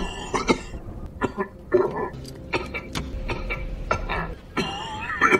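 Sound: cough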